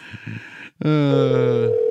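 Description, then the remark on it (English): A brief burst of muffled line noise cuts out, then a loud, steady telephone ring tone starts and holds continuously to the end, clear over the phone line, as a call to a guest keeps ringing. “Oh, it's a ringy-dingy. It's still ringing.”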